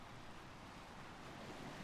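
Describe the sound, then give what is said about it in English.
A steady, rushing wash of waves at the shoreline, continuous and fairly soft, with a faint windy hiss and no voices. “You're too close to the water. Get away from there.”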